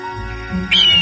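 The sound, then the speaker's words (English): A bird lets out a loud, shrill scream partway through, one drawn-out piercing call, rising over a low background rumble. “Oh, why can't this bird just stop screaming for once?”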